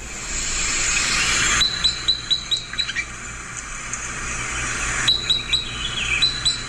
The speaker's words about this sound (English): This is type 10, the Sitka spruce crossbill.